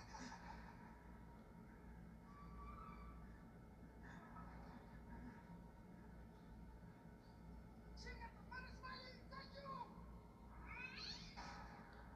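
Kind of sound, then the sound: animal, cat meowing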